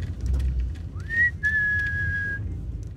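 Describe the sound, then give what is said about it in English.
A person whistles to call street cats at feeding time: a short upward-sliding note, then a long, steady high tone held for about a second, clear over a low outdoor rumble. “They recognise your whistle?”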